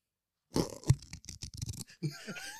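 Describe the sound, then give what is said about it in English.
Paper crinkles in a quick run of irregular, crackling bursts, fairly quiet, then a brief higher tonal sound follows near the end. “Did everybody hear the paper?”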